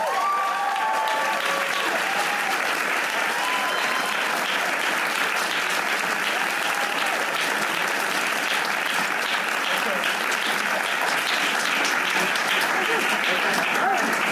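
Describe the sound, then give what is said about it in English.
An audience welcomes two guests, clapping steadily for the full stretch, a dense, even wash of applause with a few cheers and whoops rising above it near the start. “Please give a round of applause to Jeff Greenstein and Josh Friedman.”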